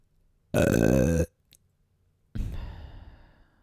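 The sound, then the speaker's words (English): A loud burp made into a microphone rumbles for under a second, followed after a short pause by a second, rougher and longer belch that trails off. No speech. “That wasn't the example, that was just me burping into the microphone for my podcast, because I have the maturity and professionalism of a 10-year-old”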